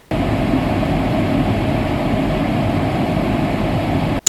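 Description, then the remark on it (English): Steady brown noise played through two big speakers on either side of a desk in a study: a continuous, deep rumbling hiss of low-frequency, heavy notes, holding an even, fairly loud level for about four seconds before cutting off with a brief click. “And now this is brown noise.”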